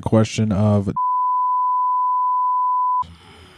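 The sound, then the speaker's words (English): A steady, pure censor bleep tone holds for about two seconds, cutting in right after a brief burst of speech and stopping abruptly before quieter background noise returns. “Beep. All they're going to hear.”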